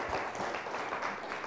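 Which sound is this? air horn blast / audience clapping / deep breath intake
audience clapping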